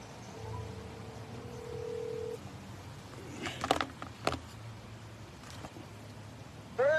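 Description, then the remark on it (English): A steady phone dial tone hums for about two seconds, followed by a few short clicks and beeps of a number being dialed, then a brief rising tone at the end. This is a call placed on the Good Morning Southeast Iowa show in Sigourney, Iowa. “Ladies and gentlemen, we're on the phone today on Good Morning Southeast Iowa with a very good friend of mine,”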